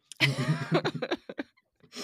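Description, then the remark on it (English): A fit of coughing: a strong opening cough followed by several shorter, raspy bursts that grow weaker and sparser before a brief breath at the end. No words are spoken. “Oh boy, I'm coughing.”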